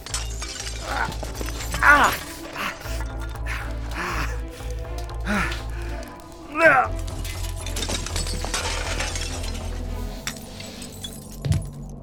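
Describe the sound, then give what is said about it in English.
Broken glass crunches and clinks in scattered bursts as someone clambers through what's left of a shattered window in a depot, with a few louder scrapes of shards over a steady low mechanical hum. “I'll just, go through what's left of the... what's left of the window here.”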